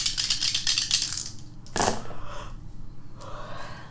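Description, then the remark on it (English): Six dice are rolled for a difficulty 7 check in a tabletop game, rattling with quick clicking for about a second and a half, then a sharp clatter as they hit the table, followed by fainter settling taps. Fairly loud, with no talking. “7 at 6 dice.”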